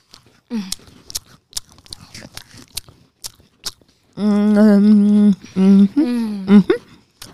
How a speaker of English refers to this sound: All right, got to chew into the microphone. This is real, not faking. Here we go. Okay, big bites.